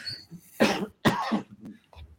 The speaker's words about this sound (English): excuse me, I've got a terrible cough.